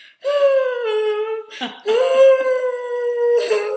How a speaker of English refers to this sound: I was like, what the fuck is going on? Why is there a crying girl at the end of the phone?